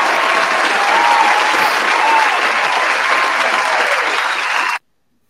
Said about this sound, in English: Shouts to Pat. Round of applause for that, man.